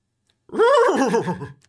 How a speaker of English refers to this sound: The horse is panicking, rearing up, nickering just a foot away.